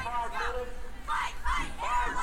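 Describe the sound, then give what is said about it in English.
The Tattnall high school team at a race start line shouts in rhythmic bursts to get psyched up, a team chant rising in loud, energetic swells about every half second over a steady crowd murmur. “And then the kids trying to get psyched up.”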